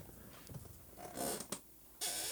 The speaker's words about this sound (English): Got a creaky chair.